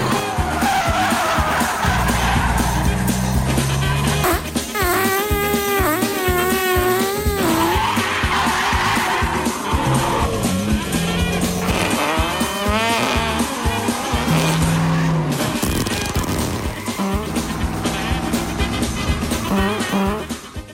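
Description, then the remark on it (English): A frantic car chase, an electric vehicle pursuing a big diesel-powered pickup truck: engines roar continuously while tires squeal in repeated wavering, high-pitched screeches, with loud dense noise throughout and no talking. “average white guy takes off in his big diesel-powered pickup truck, rolling coal, of course, then our Social Justice Warrior is in pursuit in an electric vehicle that he stole from his mom, which runs on unicorn farts.”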